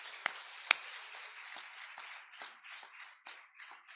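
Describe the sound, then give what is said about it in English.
A crowd applauds together as a hand clap of praise to the Lord, in a dense, sustained wash of hand claps, with a couple of sharper, louder claps standing out near the start and no voices heard. “Let's give Him a hand clap of praise.”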